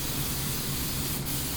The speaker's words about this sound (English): And more hairspray. And more hairspray.